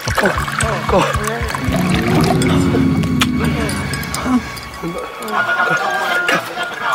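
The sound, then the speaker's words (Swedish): Coffee trickles steadily into a cup, a continuous pouring and dribbling sound running the whole time beneath people talking. “Och då blup, blup, så häller de upp det.”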